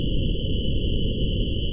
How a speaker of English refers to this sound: A ringing sets in his ears. And a hiss comes. This grew to be constant, Beethoven said. Absolutely maddening.